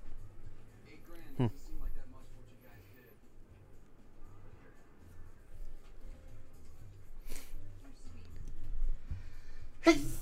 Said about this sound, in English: Bless you. Thank you.